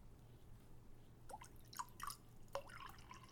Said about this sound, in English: Here, I'll pour some into my teacup.